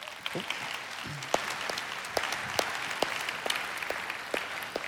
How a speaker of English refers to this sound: It's weird that I'm clapping and I recognize that.